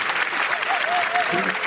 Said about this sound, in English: That's a solid 8 out of 10 clap. Yeah. We are in the Amazon arena. So I'll notch it down to a 7. Home crowd.